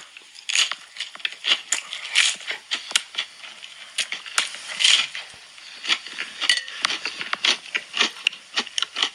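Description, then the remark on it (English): Someone biting and chewing barbecue chicken pizza: a steady run of crisp, crunchy smacks and wet clicks in an irregular rhythm, moderately loud, with no talking. “Barbecue chicken pizza.”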